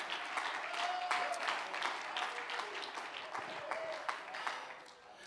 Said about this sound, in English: Oh, clap your hands and praise Him tonight.